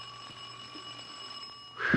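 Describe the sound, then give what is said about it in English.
A bell rings in one steady, unbroken tone with bright, shimmering overtones for nearly two seconds, then a louder burst of clattering noise cuts in at the end. “Saved by the bell.”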